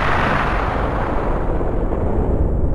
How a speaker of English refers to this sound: In the beginning, there was, an explosion.